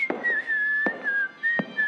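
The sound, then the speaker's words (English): A person whistles a tune in a clear, fairly high tone, with gentle rises and dips in pitch. Three sharp knocks cut through the melody at uneven intervals. “Anyone can whistle, but that doesn't mean that they should.”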